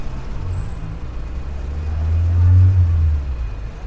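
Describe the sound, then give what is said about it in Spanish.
A car engine hums low and steady, swelling louder midway as the car accelerates onto a highway, following lines of traffic out of the city, with a constant road rumble and traffic noise around it. “Una noche metieron nuestra vida en el maletero del auto y siguiendo las hileras del tráfico, salimos a la autopista y nos vimos libres de la ciudad.”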